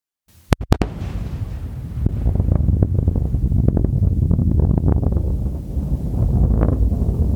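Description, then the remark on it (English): A sonic boom from a returning Falcon 9 rocket booster, a triple boom: three sharp cracks in quick succession, followed by a long, low rumble and windy roar that rolls on for several seconds. “The Falcon 9 booster sonic boom is also really unique and really cool in that it creates what is referred to as a triple boom, which sounds something like a boom-ba-boom.”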